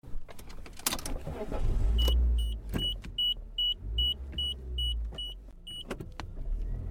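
A car rumbling along from inside the cabin as people drive home, one person squeezed on the dashboard under the windshield, with a high warning chime beeping about eight times at a steady pace, plus a few clunks and rattles; no one talks.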